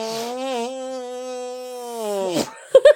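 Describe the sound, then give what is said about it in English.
A sustained arm fart gives a steady, buzzy, low-pitched tone for about two seconds, then trails off and ends in two short, sharp sputters. “I like to invite my guests at the end of each episode to musically arm fart with me.”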